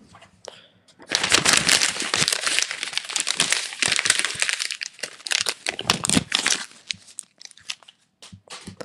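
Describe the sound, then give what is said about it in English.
Loud paper crumpling and crinkling, a dense stream of crackling rustles that starts after a second of near-quiet and continues with bursts and pauses to the end, with no talking. “Okay, so that was the paper.”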